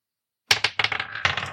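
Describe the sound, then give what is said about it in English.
Dice rolled for an insight check clatter across a hard surface: a burst of sharp, bright clicks and rattles tumbling quickly for about a second before settling, with no voices. “Ruby and Yardak, roll insight.”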